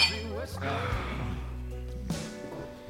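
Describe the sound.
Glasses clink together in a toast, a couple of bright ringing taps, with voices making murmured sounds around them.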